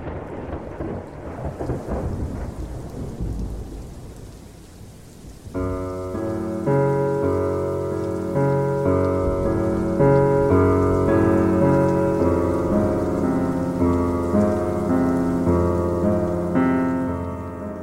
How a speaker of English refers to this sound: Friends, it's a dark and rainy night, and we're back.